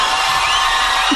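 A dense, steady roar of an arena crowd, with high-pitched screaming and cheering from many women as a man takes off his shirt, blending into a continuous loud wash of noise.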